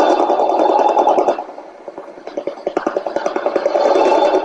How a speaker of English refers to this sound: The Russian Woodpecker.